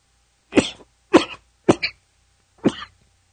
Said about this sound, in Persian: آره هوا گرم سرد شده. من همش دارم سرفه میکنم.